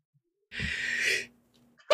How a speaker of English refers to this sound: One moment, I gotta sneeze. My mic's gonna be paused.